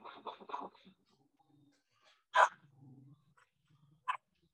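dog barking

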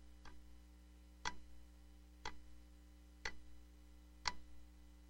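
clock ticking

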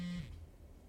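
phone ringing

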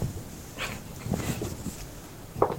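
puppy whimpering

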